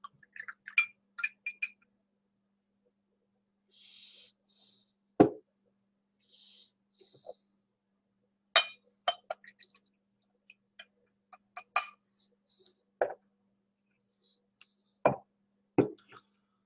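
A drink being poured into a glass: scattered clinks, taps and a few sharp plops, with short soft hissing bursts of liquid in between. Quiet and sparse, with no talking.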